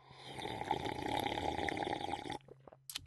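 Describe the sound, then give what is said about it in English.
Water pours steadily into a container for a couple of seconds with a broad, splashy rush, then stops abruptly, leaving a few faint drips and clinks. “You know I got the water right here. Let's check out how juicy this water is.”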